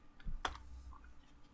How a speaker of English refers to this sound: Are you looking it up? I hear typing.